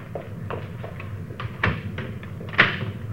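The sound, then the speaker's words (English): A door is pushed shut with a couple of firm knocks and latch clicks, preceded by lighter handling taps, over a steady low background hum. “Closing that so they won't know anybody's been here, huh?”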